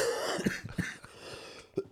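A fairly loud cough breaks out in a couple of rough bursts, followed by a quieter pause and then a sharper cough or throat-clearing sound near the end.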